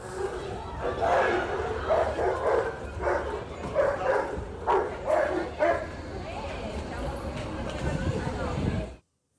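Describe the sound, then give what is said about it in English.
A dog attacking a man in a busy station barks and snarls in rapid, aggressive bursts while people shout and yell in alarm, over a loud, busy crowd background that continues after the barking fades. “But he then gets attacked by the dog that he's removed from her care.”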